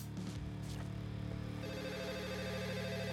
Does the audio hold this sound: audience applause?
no